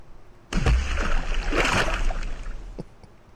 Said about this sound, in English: We just dipped you in water, bro.